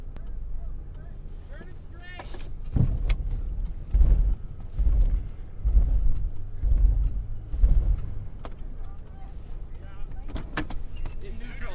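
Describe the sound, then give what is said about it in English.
A steady low engine rumble hums from inside a warm car idling in neutral while people outside are freezing, with a few louder thumps and bumps in the middle and some muffled voices underneath. “I'm in the nice warm car while everybody's out there freezing.”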